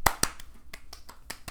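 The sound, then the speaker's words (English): One woman claps about eight times with no talking, moving her hands in a circle as she claps: two loud, sharp claps open the run, then softer, unevenly spaced claps follow. “She's actually moving her applause in a circle.”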